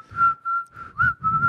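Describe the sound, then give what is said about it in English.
A person whistles a steady, nearly level tone, fairly loud, with brief breathy gaps and slight pitch shifts between bursts. “You can whistle by going out, and you can whistle by going in.”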